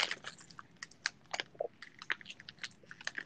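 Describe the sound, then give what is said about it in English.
Crunchy tortilla chips being munched, a quick irregular series of sharp, crisp crackles and bites with brief pauses between them, fairly quiet, over a faint steady background hum, with no talking. “I'm gonna be munching on these talkies.”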